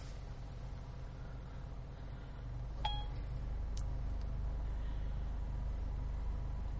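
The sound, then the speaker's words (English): Steady low rumble and road hiss from inside a moving car on the way to see Civil War, constant, with a single brief metallic clink partway through and no one talking. “We are broadcasting live from the car on our way to see Civil War.”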